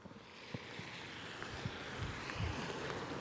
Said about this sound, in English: It's a cold, wet, windy day, and I'm looking out across a valley towards the high moors of the Pennines on the edge of Greater Manchester.